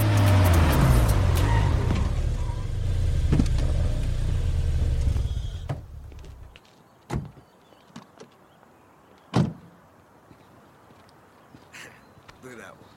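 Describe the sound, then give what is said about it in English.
A loud car engine in a Fast and the Furious scene rumbles and revs for about six seconds, then cuts off, leaving a quieter stretch broken by a few sharp clicks and thumps. “Now switch the lanes, Chevy boys, we like it fast, so I'm dropping the low, heavy on the gas.”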